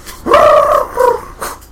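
A pug barks loudly: one long, drawn-out bark followed by a shorter one and a brief final yap, with no talking.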